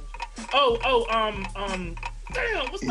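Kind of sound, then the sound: signal or alarm, game timer clock ticking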